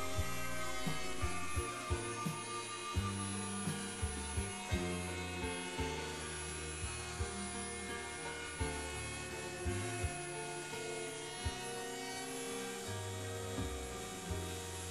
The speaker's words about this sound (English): If the plan allows, you can use a router to round off the inside pattern.